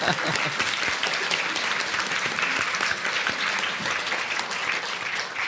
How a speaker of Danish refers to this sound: Jeg synes, vi kan klappe for det der.